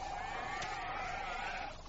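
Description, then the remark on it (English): A sustained, wavering sheep bleat in a video game holds steady for nearly two seconds, fairly loud, with no voices over it. “We got five more sheep.”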